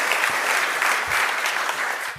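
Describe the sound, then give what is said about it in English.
A packed room of people at a Payments Association event claps steadily to welcome Open Banking chair and trustee Marion King to the stage, a dense, sustained wash of applause at moderate volume that continues evenly throughout and begins to taper at the very end. “So please welcome to the stage, with a big round of applause and welcome, the Chair and Trustee of Open Banking, Marion King.”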